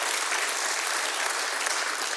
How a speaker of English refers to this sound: Yeah, go ahead. You can clap for that.